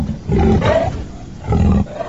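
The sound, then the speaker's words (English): A leopard roars twice in close succession, two deep, rasping growls separated by a brief pause, loud with no other sounds around them. “she should, turn into an animal when she was there inside. Like sometimes snakes, leopards”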